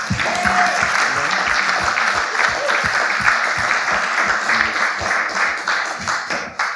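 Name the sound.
round of applause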